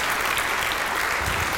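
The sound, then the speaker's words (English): A steady burst of applause from a crowd for the technical crew, many hands clapping in a dense, continuous wash of sound at a fairly loud level with no voices standing out. “So I think we should give them a huge, huge round of applause.”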